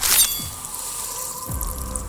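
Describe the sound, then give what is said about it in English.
A sudden wet splash bursts out, then blood keeps gushing and sloshing from severed arteries, with a couple of low, sliding drips and spatters, moderately loud, with no voices. “In one quick motion, the tentacled fiend carved a crimson streak across the jovial victim, a fountain of red life gushing from his severed arteries.”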